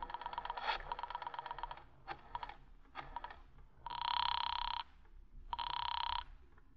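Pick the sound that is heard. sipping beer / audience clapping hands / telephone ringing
telephone ringing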